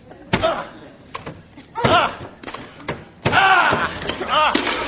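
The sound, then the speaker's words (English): A door with smoke coming out from behind it is being broken down: about five loud, heavy slams land at uneven intervals, with strained shouting and grunting voices between and over the blows. “Let's break down the door.”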